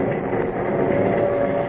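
A streamlined train rolls steadily along the rails, a dense, continuous rumble with a faint sustained whine riding on top and no voices.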